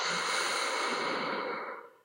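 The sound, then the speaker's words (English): A long, deep inhale drawn steadily through the nose for about two seconds during a guided breathing exercise, airy, with no talking, tapering off at the end. “So we're just going to breathe the support and the energy of the earth up through, up from the ground and into our feet, our heels, our ankles, all the way up our legs into our belly.”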